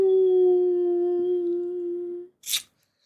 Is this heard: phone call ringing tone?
no